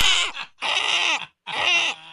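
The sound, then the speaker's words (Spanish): A person imitates a ram's bleat with three loud, wavering, nasal bursts, each about half a second long, separated by short pauses. “Y un carnero. Sería algo así.”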